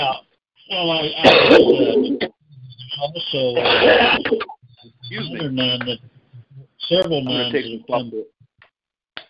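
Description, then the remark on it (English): A person clears their throat and coughs repeatedly, in four harsh, raspy bursts separated by brief pauses. “I'm gonna have to cough real quick, so somebody else take it and start speaking, and I'll come back in just a minute.”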